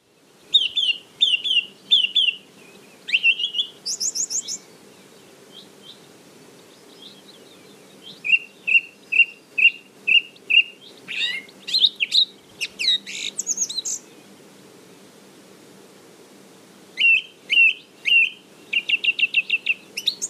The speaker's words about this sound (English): I think I was stood there for 4 minutes with my plant pot parabolic just recording that one. And it can be ear-splittingly loud at times as well. So that's the song thrush.